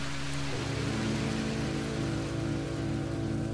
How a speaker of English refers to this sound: It was there that I had spent the last three nights, waiting patiently for the burning yellowish rains to abate.